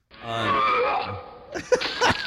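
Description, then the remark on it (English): A person imitates a donkey's bray: a long, buzzy, harmonic tone that wavers and slides downward in pitch, followed by a few rough, breathy, honking bursts. “So is this the donkey noise?”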